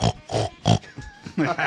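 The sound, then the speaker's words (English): A man's voice does a pig impression, snorting out a quick run of loud, nasal oinks and grunts in an uneven rhythm. “Let's get your name, what you do in the Rare Hearts, and then that pig's call or pig's impression.”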